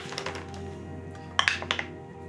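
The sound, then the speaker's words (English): Dice clatter in a dice tray as they are rolled for a bluff check: a quick burst of four or five sharp, bright clicks and taps that trail off, heard over a low, steady background hum. “Oops, my dice would stay in the tray.”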